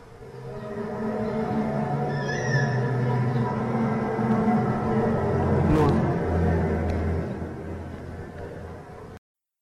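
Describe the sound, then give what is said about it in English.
A loud, steady, brassy drone like a trumpet hums continuously for several seconds from the sky, layered with deep rumbling tones, while a voice briefly speaks. “eventually it did sound like a trumpet or a hum or something in the sky”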